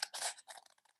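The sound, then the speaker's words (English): Scissors snip through a sheet of paper rolled up and held with sticky tape, cutting about halfway down its length to make flaps: a loud crunching bite, followed by several smaller clipped cuts that trail off quickly. “Cut down about halfway the length.”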